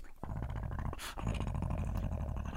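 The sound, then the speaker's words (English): A person imitates a big dog lumbering along, making a continuous low, rumbling growl with wet, slobbering sputters and a brief breathy burst in the middle, loud. “And you pop into invisibility as this dog comes lumbering. Just, like, slobbering everywhere.”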